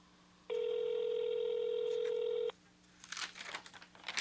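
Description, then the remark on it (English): A telephone call to KFC rings once with a steady two-second electronic tone and goes unanswered, then scattered rustling and clattering noises follow. No one speaks. “So busy at KFC, nobody's even answering the phone.”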